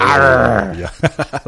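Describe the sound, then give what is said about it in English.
A person vocally imitates the V8 engine of the new Cayenne GTS starting up with open baffles: a loud, buzzy, rising roar that settles into a sputtering burble of four or five quick rhythmic pops. “For the brand new Cayenne, they've brought the V8 in the GTS back. Dun, dun, dun. And on startup, they leave the baffles open, so it's just...”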